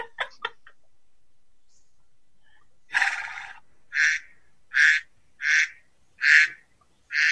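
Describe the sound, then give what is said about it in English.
A duck quacks repeatedly: one longer raspy call, then five short, evenly spaced nasal quacks, loud, after a few quick clicks and a brief silence. “Okay, we got our duck back. That's a duck.”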